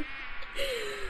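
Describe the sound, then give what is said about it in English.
A steady, dense buzzing of a swarm of about 1,000 bumblebees, fairly loud, with a rising whine sliding through the drone midway and no talking. “There are no more mosquitoes, but there are 1,000 bumblebees.”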